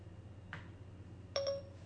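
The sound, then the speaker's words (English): A soft brushing swish, then a short two-note electronic chime from a smartphone being asked a math question by voice, clear over a low steady hum, with no one talking. “This is my phone.”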